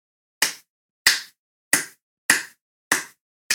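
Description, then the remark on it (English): One person clapping slowly, six sharp, crisp claps at an even, deliberate pace about half a second apart, each ringing briefly before the next, with no voices. “Good enough for a slow clap.”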